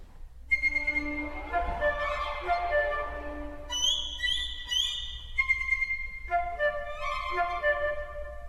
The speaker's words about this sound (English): and two solo violins adding high trills, plus an amazing cascade of harmonics as the first violins slide their fingers lightly up and down the strings. It really does add a different quality entirely to this kind of bird song.